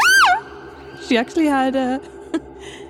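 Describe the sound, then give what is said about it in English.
A voice imitates a tiny, 3-centimetre-tall bird screaming: a shrill, squeaky shriek followed by a few shorter, lower strained cries and a final brief yelp, loud. “And she was so sad, she screamed.”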